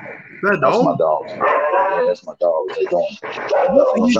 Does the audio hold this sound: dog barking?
yes